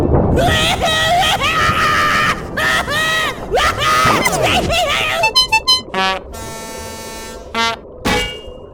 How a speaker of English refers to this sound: Knocked the clock right off the wall. That is some scream. And was that a horn section? Incredible.